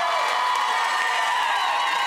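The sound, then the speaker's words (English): An audience screams and cheers to vote for Erin and Ross as winners, in a loud, sustained burst of overlapping high-pitched voices that holds steady for about two seconds without pause. “If you think Erin and Ross won, scream!”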